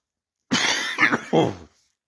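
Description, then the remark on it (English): A person with a throat infection coughs three times in quick succession, harsh, with rough, breathy bursts and silence before and after. “You will, like I said, you will hear me cough a lot, so.”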